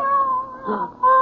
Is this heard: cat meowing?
yes